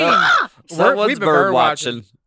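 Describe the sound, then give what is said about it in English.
A bird squawks loudly in a few harsh, raspy bursts, with brief gaps between the calls and no talking. “No, put the bird back in. We're not done the intro. Someone's bird watching.”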